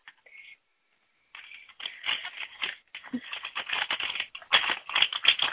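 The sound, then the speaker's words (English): Tough plastic packaging is ripped and wrenched open, a dense run of loud, sharp crackling and crinkling bursts that builds over several seconds after a brief faint rustle, with no talking. “At least the plastic is very noisy.”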